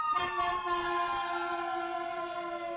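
Emergency vehicle sirens blare steadily outside as they come by, a loud, sustained horn-like tone that slowly drops in pitch as they pass, with no talking over it.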